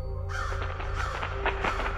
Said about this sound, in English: Crows scatter in a flapping black cloud, cawing their disapproval at me.